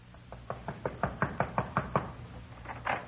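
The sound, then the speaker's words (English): A steady series of about a dozen sharp knocks on the wooden door of Red Fulton's place, evenly spaced, with no voices, ending in a slightly louder rap. “We went over to Red's place and knocked on his door.”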